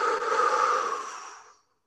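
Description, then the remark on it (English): A single long, fairly loud, breathy exhale after a deep breath in during a guided breathing exercise, airy and steady before tapering off and fading to silence after about a second and a half. “Fully in. And all the way out.”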